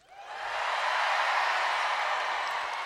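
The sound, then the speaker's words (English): A live audience cheers loudly in response to a poll asking who eats with a fork and knife, the noise swelling within the first half second and then holding as a steady, dense roar of many voices for a few seconds, with no distinct speech. “I don't want to hear any booing. And let right? us know by your cheering.”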